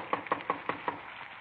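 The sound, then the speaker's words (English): Five steady, evenly spaced, hollow-sounding knocks on the wooden front door of a small redwood house on Nordhoff Street in the San Fernando Valley, after it has started to rain, with a faint background hiss and no voices. “We parked the car and walked up onto the porch. Frank tried the door.”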